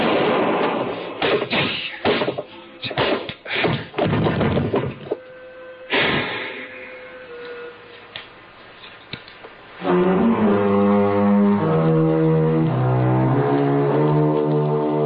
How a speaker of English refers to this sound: I knew the sound of the gunshot would bring the others back to the cabin.